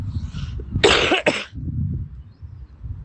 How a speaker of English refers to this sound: And it gives me a horrible cough, because in my house, my whole room vibrates.